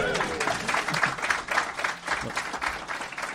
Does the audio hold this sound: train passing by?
no